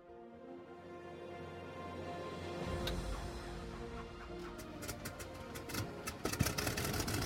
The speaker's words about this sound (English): An engine smoked and sputtered. One propeller began to stir on the aging bomber. Then another. The third engine started to shudder and choke. Satisfying sounds of old piston engines. Finally, the last one coughed to life.